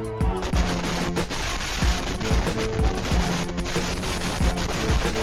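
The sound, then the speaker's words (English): Fireworks explode in a rapid, continuous barrage, dense crackling pops layered with deeper booms, loud for several seconds with no letup and no voices. “Why you should have fireworks safety and teach your children before you give them a fucking lighter.”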